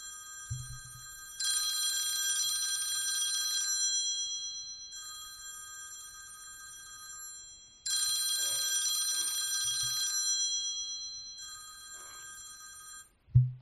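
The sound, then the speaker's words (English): A phone rings with a bright, bell-like electronic ring, in repeated bursts of about two seconds separated by short pauses, with no talking; the phone is being called by an Echo smart speaker's Find My Phone feature, in Australia. “Great, I'm going to call your phone now, so listen out. If it doesn't ring, it's because I can't connect or it's on silent.”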